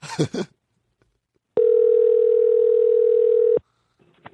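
A short burst of sound, then a pause, followed by one steady, mid-pitched telephone ringing tone as a call is placed, holding evenly for about two seconds before cutting off abruptly.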